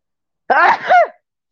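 One loud, close sneeze with a sharp voiced intake and a forceful burst, lasting under a second with silence on either side.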